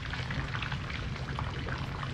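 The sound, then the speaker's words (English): A steady, continuous hiss of running water, like a shower spraying, holds at an even level throughout with a dense patter and no voices. “So, interesting choice for the showers here.”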